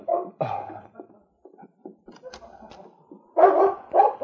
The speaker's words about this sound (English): About half an hour later, Sergeant Preston was aroused into consciousness by the sound of the great dog King barking and scratching at the door.